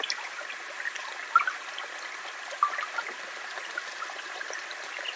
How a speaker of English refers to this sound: A liminal space in and out of the streaming river. Soft water lines wriggle like distorting mirrors over my skin.